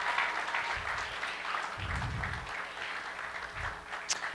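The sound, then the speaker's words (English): A crowd applauds steadily as parents and kids come up onto the stage, a dense wash of many hands clapping at once that holds at an even level throughout, with a few low thumps and murmurs mixed in. “Everybody likes to be clapped for.”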